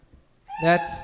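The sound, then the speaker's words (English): A person imitates a cat's meow with one loud, drawn-out, strained call, following a brief near-silent pause. “That's my impression of a cat that I gave acid to.”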